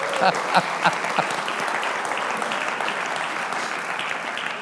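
A crowd claps steadily, a dense wash of many hands applauding at moderate volume, with a few faint voices underneath and a couple of brief louder moments near the start.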